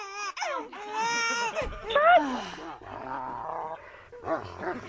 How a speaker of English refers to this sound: Stop. I hear a dog.